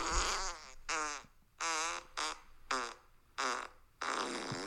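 A string of about seven loud, close fart blasts, each a buzzy, sputtering burst with wobbling pitch, separated by brief pauses, the last one drawn out longer.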